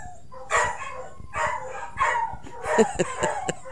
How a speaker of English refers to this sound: Oh, my gosh. My dogs are having a crazy fit in there. Y'all hear them? It's probably the mailman.